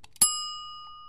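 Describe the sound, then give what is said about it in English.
A single bright bell is struck once, ringing out clearly with a sharp attack and a long, shimmering tone that sustains and slowly fades, with no voices around it. “That bell tells us that that's all the unpacking we have for this episode.”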